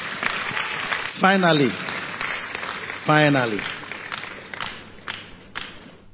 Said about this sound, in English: Clap for Jesus.